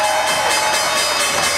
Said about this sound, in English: All right, there is the opening bell for this Monday. You can take a look at the real-time exchanges. The mayor of New York, Eric Adams, doing the honors here at the big board.